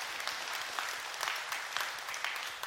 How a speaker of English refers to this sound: If you think that, amen, that's worthy of applause.